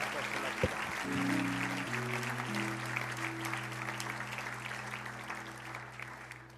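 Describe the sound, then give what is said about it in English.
An audience at Calvary Church claps their hands to thank the Lord, in steady, dense applause that fills the whole clip, with sustained low organ or keyboard chords droning underneath and shifting pitch partway through. “Why don't you clap your hands and thank the Lord for that?”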